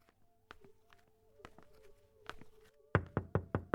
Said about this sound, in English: Feeling overwhelmed and underdressed, I tapped the front door tentatively.